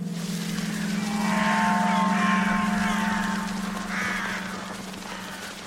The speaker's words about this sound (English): But before Mark could take his foot off the brake, a bunch of crows took to the sky in the near cornfield.